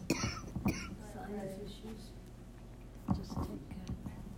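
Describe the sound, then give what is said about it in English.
A woman coughs in a short fit during a church service, a couple of harsh bursts, then a pause and two more, moderately quiet with faint murmuring voices. “We are all in a prayer of agreement that coughing it has to go in Jesus' name and not return and continue to interfere this service today.”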